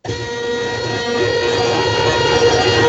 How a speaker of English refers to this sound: That's the buzzer. I was like, what the fuck is that?